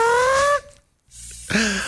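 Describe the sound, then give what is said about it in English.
A fart in two bursts from a man hiding in bushes during a police search with a police dog: a half-second tonal, slightly rising toot, a brief silence, then a lower, buzzier one. Both are fairly loud, with no talking. “A fart gave away where the guy was.”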